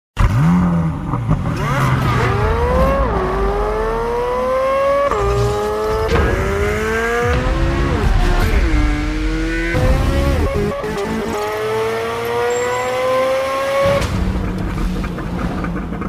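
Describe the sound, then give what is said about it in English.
A Chevrolet Corvette Z06 engine screams at high revs through repeated rising gear pulls, each climb in pitch broken by a quick drop at the shift, loud with no talking. “Chevy's put a teaser out there of what the engine sounds like, and you would swear you're listening to a Ferrari.”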